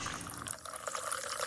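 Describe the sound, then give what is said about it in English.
About 3 ounces of fizzy tonic water are poured into a tall glass of ice and cranberry juice, a steady splashing stream with bright crackling bubbles throughout, continuous and fairly loud with no voices. “Then, pour 3 ounces of tonic. So bubbly.”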